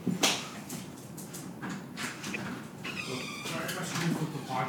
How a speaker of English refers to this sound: Sorry, someone's at the door. I had to let him in.